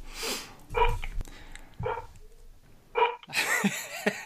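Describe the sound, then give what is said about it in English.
Several sharp dog barks ring out in a loose, irregular series, spaced about a second apart, moderately loud, with no talking over them. “I hear dogs barking.”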